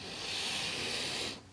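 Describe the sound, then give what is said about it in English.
A steady, breathy hiss of steam from a kettle of boiling water, fairly loud, holding even for over a second before cutting off abruptly. “If anybody needs more hot water in that kettle, there is boiling water.”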